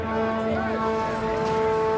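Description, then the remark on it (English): A big diesel pickup truck's horn blares in one long, loud, unbroken honk with a steady buzzing pitch, over a low engine rumble. The truck is driving up a dirt county road toward protesters blocking it. “And a guy in a big diesel pickup truck came driving up the dirt road, honking his horn like he wasn't going to stop.”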